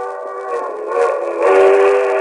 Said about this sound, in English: A train. If I can make that train. It's a quarter mile along the edge of the field of the tracks.